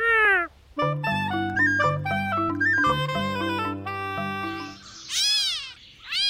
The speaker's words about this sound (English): This is a call that gets people confused. It actually led to the name of this bird. This bird is called a gray catbird because its song is very mechanical and melodical, but its call sounds almost like a cat meowing in the bushes.